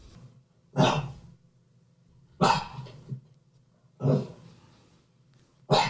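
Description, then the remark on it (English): A dog barks four times in a slow, steady rhythm, each bark short and loud, with quiet pauses between them and no talking. “So we'll move on to the next type of barking.”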